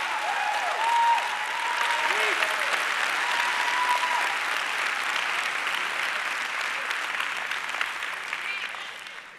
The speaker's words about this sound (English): I'm trying. And just like y'all got up and clapped every single time you do it, that's what the enemy does.